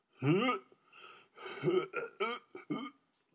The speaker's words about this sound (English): Ooh, God, I just burped. Disgustingness.